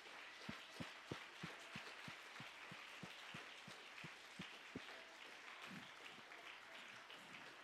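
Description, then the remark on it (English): An audience applauds together at a speaker's request, with a steady rhythmic clap beat standing out over the dense wash of many hands, fading into looser scattered clapping toward the end. “Let's just clap our hands if you believe that's getting ready to take place.”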